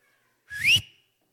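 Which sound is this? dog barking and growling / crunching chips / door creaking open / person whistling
person whistling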